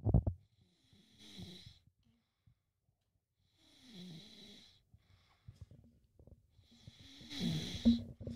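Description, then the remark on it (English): Someone snores in slow, regular cycles: three drawn-out, raspy breaths with a low rumble and airy hiss, separated by quiet pauses, the last one the loudest. “It sounds like watching a fucking dog sleep.”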